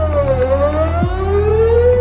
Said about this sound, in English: This is why we use low frequencies anytime we need a sound to travel as far as possible, like a foghorn. Or like a sweeping tornado siren.